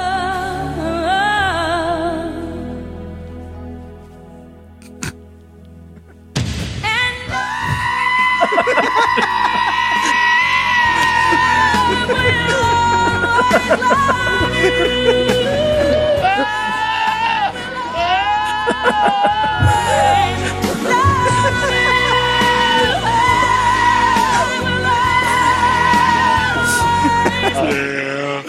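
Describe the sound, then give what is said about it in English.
Goats scream and bleat loudly in long, wavering cries that rise and fall like a sung melody, over a full musical backing that kicks in after a quieter opening. “I don't care how many times you hear goats screaming.”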